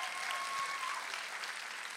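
A West Side church audience claps along in faith, with dense overlapping applause filling the whole two seconds at an even, moderately loud level. There is no speech over it.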